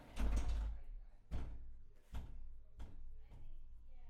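A bathroom door is shoved closed with a heavy opening thump followed by four more knocking bangs at roughly even intervals, each a little softer.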